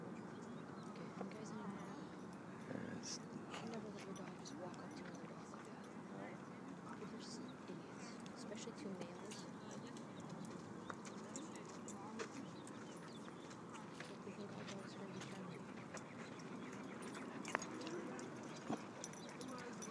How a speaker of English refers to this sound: Isn't that great, those sounds? Be nice to each other, doggies.